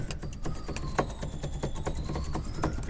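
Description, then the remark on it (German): A cinema organ's xylophone stop taps out a quick, steady run of bright struck notes over a held organ tone, with no voices present. “Gibt es zum Beispiel Xylophon.”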